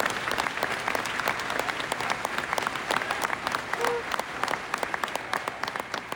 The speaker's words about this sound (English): I think people just wanted to get some sort of relief, you know, and so when the national anthem finished singing, there was a huge sort of ripple of applause that sort of came down and disappeared.